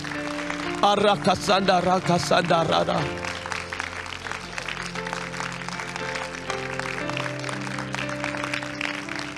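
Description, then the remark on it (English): An audience claps their hands in rejoicing in a steady, sustained rhythm, mixed with voices and sustained musical tones. An excited voice rises over the clapping early on. “Come on, let's clap our hands in rejoicing.”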